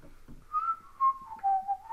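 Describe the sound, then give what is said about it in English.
Someone whistles: a shaky, wavering tune that slides unsteadily between a few pitches in uneven bursts, with breathy gaps and no talking. “Your whistling is horrible. You suck at whistling.”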